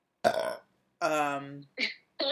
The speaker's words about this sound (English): That was like a Homer Simpson burp. That was good.